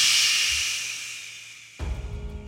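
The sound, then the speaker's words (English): A breathy, hissing whoosh transition sound, introducing a recap of Rivals of Waterdeep, sweeps through and fades out over about two seconds, then cuts abruptly into a low, rumbling bed of noise. “So previously on Rivals of Waterdeep. Whoosh.”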